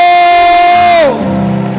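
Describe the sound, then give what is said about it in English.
A loud, sustained high cry rings out over a church audience, then slides down in pitch and gives way to a dense wash of the audience shouting and cheering as their pastor is welcomed. “If you are excited and you believe that God has indeed sent a specific word for you, I want you to begin to shout.”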